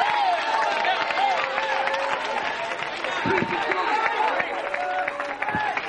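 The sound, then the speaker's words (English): An audience claps steadily amid a dense wash of crowd voices, with shouts and calls rising over the continuous, fairly loud clapping throughout. “Oh, you're clapping your hands, but you still don't have a concept.”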